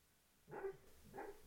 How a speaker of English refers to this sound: Can you hear O'Neill? He's having a dream, barking in his sleep. Listen.